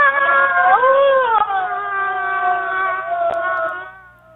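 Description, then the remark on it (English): A single drawn-out, high-pitched human scream, number 06464 from a website archive of about 66,464 user-uploaded screams, lasting about four seconds, wavering and dipping in pitch with a strained, almost cat-like yowling quality before trailing off at the end. “Let's hear number 06464.”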